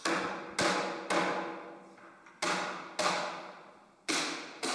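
Six loud hammer blows strike a metal hoop driver on a barrel hoop to loosen and remove the chime at the top of the barrel, each sharp clang ringing out before the next, at an uneven pace with no talking.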